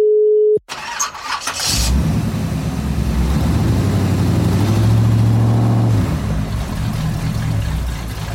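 After a brief steady tone, a car engine cranks and catches, then settles into a loud rumble that revs up and holds high before easing back down.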